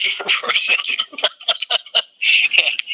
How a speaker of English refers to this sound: Well, I hear the rooster back there crowing. Yeah. He better be telling his hens to lay eggs because I might need them.